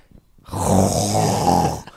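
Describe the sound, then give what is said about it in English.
A voice imitates a single long, rasping snore, loud, lasting just over a second after a brief quiet start. “He literally started snoring seconds after saying that.”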